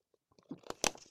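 A quick sip of water: a few soft mouth clicks and wet smacking noises, then a brief louder slurp-like burst near the end. Quiet, with no talking.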